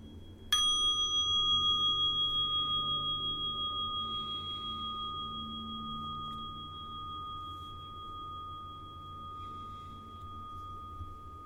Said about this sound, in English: So I'm going to invite the bell now and we'll breathe together.